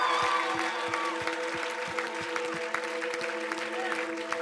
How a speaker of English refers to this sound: Awesome. Awesome. Go ahead and y'all give him a clap real quick. Come on.